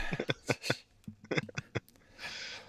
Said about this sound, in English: I had to burp speaking of dude stuff.